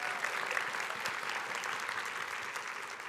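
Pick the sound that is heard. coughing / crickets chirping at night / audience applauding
audience applauding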